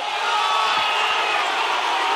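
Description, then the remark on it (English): A loud, steady roar of a basketball crowd at the Adelaide Entertainment Centre shouting together for a foul, late in a game tied 75 apiece, a dense wash of voices holding at the same level throughout with no clear breaks and no single voice standing out. “Crowd just wanting a foul.”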